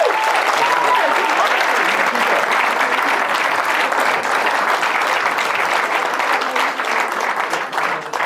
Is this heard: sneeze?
no